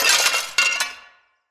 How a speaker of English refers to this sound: Moments before you're about to exit the hallway and turn the corner into that main room, you hear the sound of glass breaking from the back of the house.